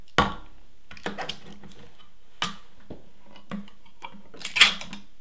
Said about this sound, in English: All right, step one to our famous vegetarian chili is open the can.